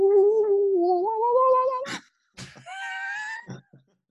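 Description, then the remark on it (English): A voice imitates the didgeridoo soundtrack of a restaurant serving American food: a long, wavering droning hum that slowly climbs in pitch, a breathy burst, a brief pause, then a second higher sustained drone ending in a puff of breath. “Well, it's just a restaurant that serves like American food, and there's a like a plaster frog, and the soundtrack has like didgeridoos and goes.”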